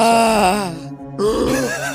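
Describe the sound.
A voice imitates a wailing siren, a loud, sustained tone sliding up and down in pitch, breaking off briefly before a second rising, wavering wail.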